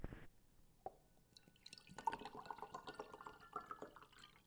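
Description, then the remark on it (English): Water pours into a glass, starting with a brief clink and a single drip, then a steady gurgling stream with bubbling, watery splashes that continue to the end. No one speaks. “I'm going to pour myself a cold, warm, room temperature glass of water.”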